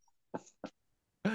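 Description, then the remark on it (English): A cat retches and hacks, two short harsh heaves followed by a longer, strained, throaty gag, eventually coughing up a gray furball, fairly loud with no one talking. “Over top of a cat retching its guts out and eventually coughing up a pretty horrific shit gray furball.”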